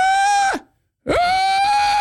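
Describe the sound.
A voice imitates an actor playing the character Alex, screaming in a theater scene: two loud, strained, sustained yells separated by a short pause, the first trailing off with a falling pitch and the second rising sharply, then holding steady.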